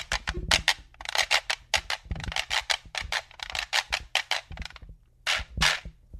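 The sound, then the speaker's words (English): A donkey jawbone quijada with loose teeth, struck on the side with a stick in a quick, rhythmic pattern of bright, rattling clicks and buzzy hits, pausing briefly near the end, with a faint low hum beneath. “So when you hit the side, they make a really pretty sound.”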